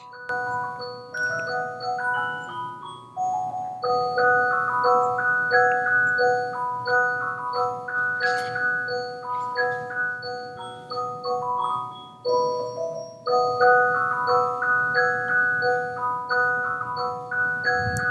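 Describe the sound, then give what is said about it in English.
A clock chimes a long, steady melody of ringing bell tones whose notes overlap and linger, fairly loud, playing on for the whole stretch with no talking. “Let's wait for this clock to finish it.”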